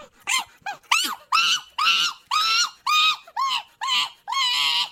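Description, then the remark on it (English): A capuchin monkey calls in a rapid series of about a dozen high, shrill, whiny cries, a few short yelps first, then longer squealing notes at a steady pace, clear with no talking. “Capuchin. That's it, a monkey.”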